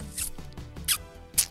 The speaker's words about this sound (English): I was licking the paper, the papers, and rolling a cigarette. Yeah. What's the paper brand called? Tally-ho.